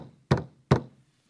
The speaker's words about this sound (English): And about that time, there's a knock on the door.